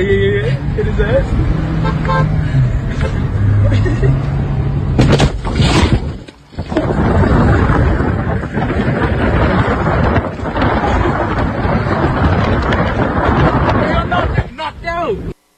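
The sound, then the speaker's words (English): A car striking a man on a bicycle, who flies off and hits the windshield: a loud horn and traffic rumble, then a sharp crash of impact midway, followed by dense, noisy commotion with voices underneath. “They hit him with the car. The guy flies off the bicycle, hits the car, hits the windshield, rolls off to the side.”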